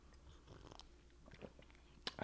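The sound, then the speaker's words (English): Quiet mouth sounds of someone sipping hot coffee from a cup, with soft slurps and lip noises, ending in a brief sharper slurp or clink. “So should we have a little sip?”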